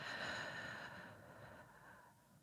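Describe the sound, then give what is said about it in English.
A slow, soft, airy exhale of breath during a guided breathing meditation, gradually fading over a couple of seconds with no talking. “And breathing out.”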